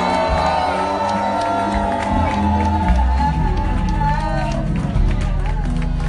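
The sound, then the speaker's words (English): A large crowd at a nighttime live show, asked to make some noise, cheers and shouts continuously, with whoops rising out of a dense, steady roar over a pounding low-end beat, staying loud for the full six seconds. “If you're feeling good tonight, make some noise in here.”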